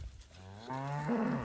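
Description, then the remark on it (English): A cow lets out one long, deep moo that swells in pitch and loudness toward the end, with no one speaking over it, as a local rancher's cows are gathered up on horseback in the mountains of a valley in north central Washington and moved toward the exits. “And she and I are up in the mountains of the little valley I live in, north central Washington, helping a local rancher gather up his cows. And move them toward the exits.”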